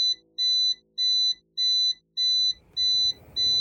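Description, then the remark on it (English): A smoke detector alarm blares in a steady series of loud, high-pitched electronic beeps, about six in quick succession, with a low rumbling noise rising underneath toward the end. “More months go by, and we are all awoken by our smoke detector going off in the middle of the night.”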